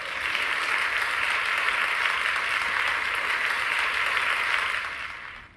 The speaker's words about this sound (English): Let's get a round of applause in this. Man, let's get a round of applause in this bitch, man.